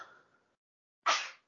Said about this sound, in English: Bless you. Wouldn't be a podcast without you sneezing. Allergic to podcasts.